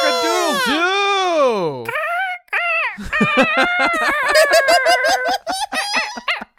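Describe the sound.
A person imitates a rooster crowing, loud, with a long rising-and-falling crow followed by a burst of rapid, choppy squawking calls.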